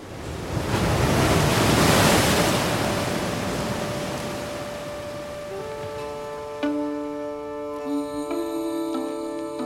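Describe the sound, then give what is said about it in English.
On a sunny day, a loud wash of sparkling sea waves surges onto the shore and slowly recedes, then gentle sustained musical tones rise over the fading surf. No one speaks. “The sea is sparkling.”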